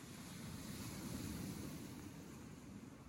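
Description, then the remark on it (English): Steady Lake Michigan waves wash up onto the shore in the evening, a continuous rushing surge with wind noise buffeting the microphone. No voices are heard. “I like this because the water comes in a little hard and she kind of has to scramble away from it.”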